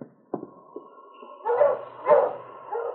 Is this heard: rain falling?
no